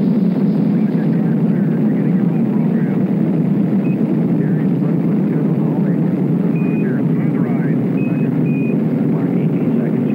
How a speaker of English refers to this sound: we have a liftoff. Liftoff, the engine is building up to 1.6 million pounds of thrust, and Skylab is moving slowly off the pad. It's cleared the tower.